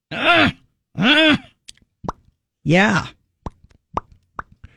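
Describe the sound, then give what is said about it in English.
A voice mimics someone straining to open a pickle jar: three long, effortful groans followed by a scatter of short, sharp mouth pops imitating the lid popping free, fairly loud. “opening a bottle of pickles.”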